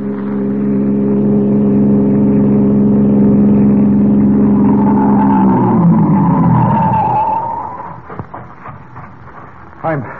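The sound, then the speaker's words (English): A passing car's engine hums loudly and steadily on a road, then the pitch drops as the car brakes after being flagged down, its tires squealing in a skid as it winds down to a stop, followed by a few sharp clunks. “The police captain, left unconscious in the bushes at the side of the road, has recovered sufficiently to stagger to his feet and attempt to flag a passing car.”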